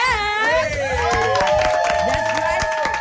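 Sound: studio audience cheering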